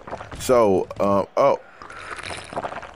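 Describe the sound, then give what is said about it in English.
Water being poured at a press conference, a steady splashing trickle lasting a second or so, after a few short vocal sounds from a person. “Let me get some water. Let me get a water. Let me get extra water.”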